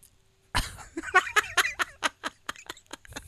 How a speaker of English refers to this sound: Is that how it works? Yeah, I think so. When something dumb is said, you just cough.